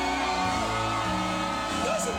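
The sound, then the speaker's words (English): A large church audience shouting together as the preacher urges them to shout again, a loud, dense wall of many voices yelling and whooping at once, sustained without a break for a couple of seconds. “You have to start shouting again one more time.”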